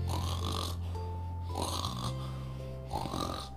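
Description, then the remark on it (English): A voice imitates loud, drawn-out snoring, with three raspy snores in a slow steady rhythm, close and prominent with no other talking. “Mrs. Bear began to snore.”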